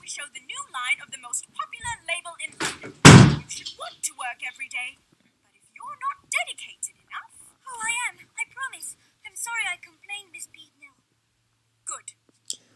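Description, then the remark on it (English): A door is opened to let a dog out, with one short, sharp thump amid hushed whispering, while faint dog whimpers and yips come and go. “Sophie wants to come with you. But open the door. And she's already out.”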